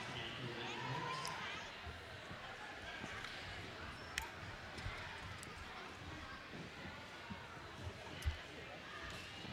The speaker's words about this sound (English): And Davis, once again, slamming the ball down really hard on the court. We might have to get that fixed afterwards.